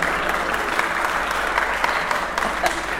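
A crowd claps steadily in dense, continuous applause, many hands blending into a bright, even patter that holds at a fairly loud level for the full few seconds without any talking.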